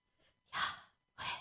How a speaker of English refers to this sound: Breathe. Just breathing in itself. Something I've learned recently is that when you breathe, it kind of sounds like Yahweh.